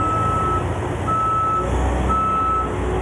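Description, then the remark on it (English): A truck's reversing alarm beeps three times in a steady rhythm, each tone long and clear, over a constant low engine rumble. “The truck's here.”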